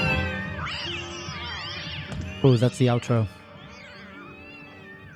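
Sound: cats meowing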